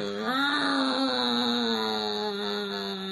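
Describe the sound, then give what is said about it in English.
A single voice holds a steady, buzzy, nasal drone for about three seconds, imitating a chainsaw's running engine. The sound is fairly loud, with a slight rise in pitch near the start. “Is that what a chainsaw sounds like to you? Because I thought it was more like...”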